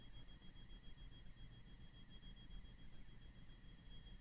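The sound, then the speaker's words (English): A steady, high-pitched alarm tone sounds continuously and fairly faintly over a constant low, rumbling background hum, with no one speaking. “Okay, I won't be able to have you on as long as this alarm is on.”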